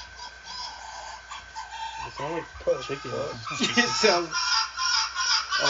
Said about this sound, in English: Fox screaming sex.